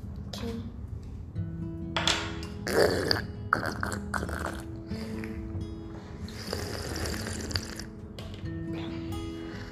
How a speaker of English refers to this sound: Do you know how we drink? How we sip tea in coffee? How we sip coffee. Slurp. Yeah, very loud slurping sound.